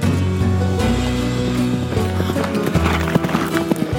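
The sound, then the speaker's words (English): Horse hooves clip-clop in a steady rhythm as McGill rides his horse out of town, the clopping growing busier over a few seconds against a sustained droning background, with no talking. “McGill then mounted his horse and rode out of town.”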